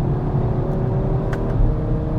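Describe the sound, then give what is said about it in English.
An Audi RS3 engine roars steadily under acceleration, loud, with a deep rumbling drone and a faint whine riding on top, no voices present. “Ooh, the power.”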